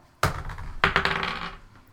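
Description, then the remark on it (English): Dice rolled for a wisdom check clatter onto a hard table, two sharp impacts followed by a few quick bouncing clicks that settle and fade within a second or so. The rattle is fairly loud, with no voices. “I'm gonna try a different dice.”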